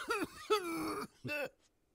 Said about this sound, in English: Don't cough. You can't cough anymore.